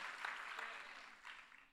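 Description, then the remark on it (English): An audience claps together to thank God in a steady, dense wash of applause that holds evenly throughout, with a few sharper bursts standing out from the crowd. “Come on, clap a little bit louder and thank God for who he is.”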